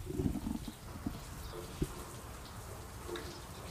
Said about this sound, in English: Barn door open, and it's raining right now. It's actually raining. I'm sure you guys can hear it a little bit.